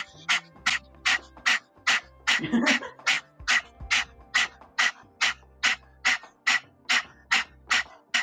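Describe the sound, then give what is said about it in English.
People pant like dogs with tongues out, in quick, steady, breathy huffs, roughly two or three per second, as a breath-of-fire exercise while holding a dog's collar. It continues the whole time over a faint low background hum. “Stick your tongue out and pant like a dog.”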